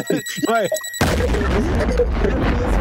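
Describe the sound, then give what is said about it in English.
A short warbling, swooping electronic tone gives way to a sudden loud explosion sound effect, its broad crackling roar and low rumble sustaining for nearly two seconds. “Oh, my explosion.”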